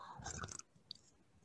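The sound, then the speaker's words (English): A short slurping sip of tea lasting about half a second, followed by a brief faint click and quiet mouth sounds; no one speaks. “Just have a sip of tea.”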